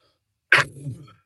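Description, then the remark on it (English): A single sharp, explosive cough bursts out, trailing into a short, low, rasping throat sound that fades within about half a second, with no talking around it. “Man, we'll have to get you a cough button.”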